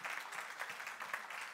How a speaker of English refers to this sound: Let's clap our hands